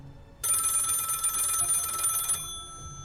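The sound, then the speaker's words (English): A desk telephone in a dark police bullpen, lit by a small lamp pointed at it, rings in one loud, continuous burst lasting about two seconds. It is a bright metallic trill that then cuts off, leaving a faint ringing tail over quiet room noise. “A small lamp pointed directly at the phone on Officer Johnson's desk. It began to ring.”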